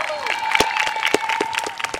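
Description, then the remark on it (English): An audience of family members, around 300, claps steadily for eighth-grade graduates at a graduation ceremony on a lawn on a spring day. A dense patter of many hands with a few sharper individual claps standing out, plus a faint sustained tone and light crowd murmur underneath. “Let's greet our 8th grade graduates. Give them a hand, please.”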